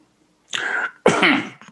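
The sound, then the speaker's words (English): Two loud coughs in quick succession, each a harsh burst of breath, followed by a brief fainter cough-like catch, with no talking. “These coughs is not COVID.”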